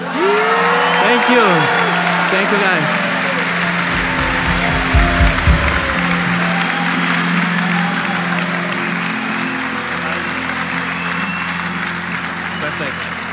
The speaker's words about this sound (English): So I'll have my hand on my phone. And once I take my hand out, you guys can yell or clap or whatever you want to do. So let's see if this will work.